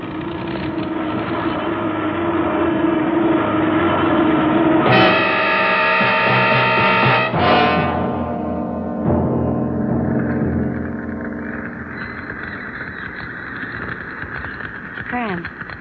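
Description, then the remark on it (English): A loud, steady engine drone with shifting harmonic whines, which sputters and changes pitch partway through as the failing starboard airplane engine, on fire, labors during a crash landing. “Oh, it's just the starboard engine. I'll have to feather the prop.”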